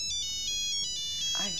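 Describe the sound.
A cell phone ringtone, ringing again, chimes in a bright, repeating electronic pattern, clear, with a voice briefly starting to speak over it at the end.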